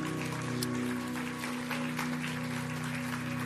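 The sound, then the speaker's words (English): A crowd applauds the married couples, many hands clapping in a dense, continuous patter over a low sustained hum, with no voices rising above it. “Give a hand clap to all the married couples.”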